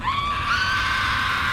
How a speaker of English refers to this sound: Screaming can be heard all across town.